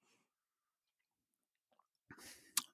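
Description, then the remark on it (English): After a long near-silent stretch, a quick slurping sip of a fizzy lithium drink rises with a wet, hissy texture and ends in a sharp little gulp or click. No one speaks. “Just have a sip.”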